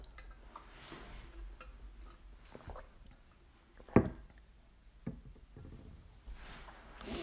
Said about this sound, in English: I have a sip of my water here. Hold on.